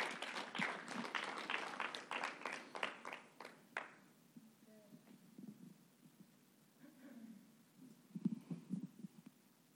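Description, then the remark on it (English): A church audience bursts into applause to praise God, a dense crackle of many hands clapping for about four seconds before it dies away, leaving quiet low rumbles and faint murmuring. “Let's clap this up.”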